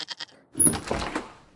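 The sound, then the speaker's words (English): A goat named Rudolph bleats: a quick stuttering series of short cries, then a louder, drawn-out quavering bleat that trails off. No one speaks. “Merry Christmas, Rudolph, to the sweetest little goat in the whole wide world.”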